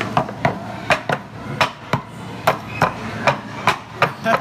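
A horse hooves sound effect made by hand at a museum sound effects station in front of a screen playing an old movie: a steady clip-clop of about a dozen sharp, hollow knocks in an uneven trotting rhythm, fairly loud, with no one talking.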